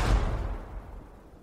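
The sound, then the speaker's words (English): A single deep blast from a ship's cannon booms out, its low rumble rolling and fading away over the next second or so, heard on its own with no voices. “I think there's six cannons on that ship. I think you're two bullets short there.”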